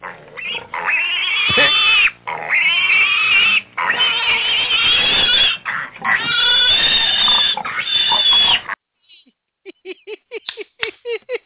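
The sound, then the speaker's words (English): Loud, harsh pig squeals in long sustained bursts for several seconds, then a quick series of short grunting oinks. “Oh, man, the pig of the week.”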